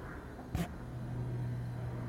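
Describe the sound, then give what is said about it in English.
A refrigerator hum, picked up by a microphone, sets in as a steady, low drone just after a brief click, then holds evenly and quietly in the room with no one talking. “Yeah, I mean, it's picking up fridge noise, but not RF noise.”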